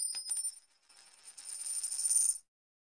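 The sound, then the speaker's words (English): Several metallic coin clinks tumble in quick succession, then a longer jangling shimmer of coins settling into a tip bucket, bright, with no voices. “Thank you for the coins as usual.”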